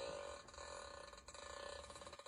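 A dog's long, buzzy fart in a video clip rattles on for about two seconds, loud, with a sputtering, ratchet-like texture and no voices.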